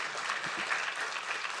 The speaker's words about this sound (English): Huge round of applause